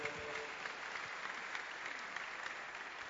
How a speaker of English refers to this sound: Hallelujah. Somebody put your hands together for the Lord.